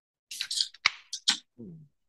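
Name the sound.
beer can cracked open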